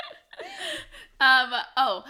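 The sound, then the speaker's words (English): A person hiccups twice in quick succession, each a sharp, abrupt voiced burst, following a softer breathy vocal sound. “So don't mind them while I hiccup.”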